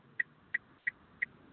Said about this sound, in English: Oh, hello, we've got a ticking sound on the phone.